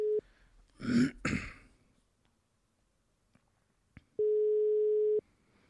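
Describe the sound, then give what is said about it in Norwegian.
A phone ringback tone: two steady electronic beeps, one brief and one held for about a second, with a throat clearing between them and quiet room noise. “Jeg håper han ikke tek telefonen.”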